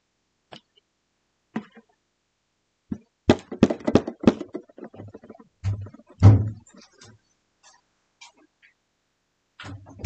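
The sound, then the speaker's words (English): Sharp knocking on the door of a house comes in a few irregular bursts of raps, some with a heavy low thud, separated by short quiet gaps. No one speaks. “Knock On The Door”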